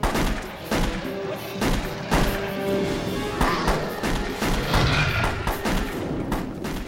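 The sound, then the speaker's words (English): Loud gunfire sound effects from a film scene: a character fires a bolt-action rifle at a rapid, steady semi-automatic pace. Sharp, booming shots are layered over a dense rumbling background with a tonal hum running underneath. “a character using a gun that is very, very clearly a bolt action rifle, yet he's firing it like it's a semi-automatic.”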